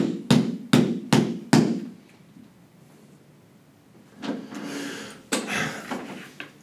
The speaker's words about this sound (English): Fine, knock on the door then. Let's knock on the door.